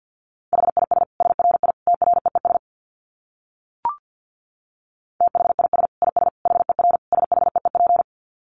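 Fast Morse code at 50 words per minute in a steady mid-pitched tone, keyed in rapid dits and dahs across two bursts of several seconds each, split by a pause with a single short click.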